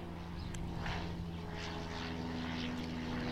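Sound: airplane flying overhead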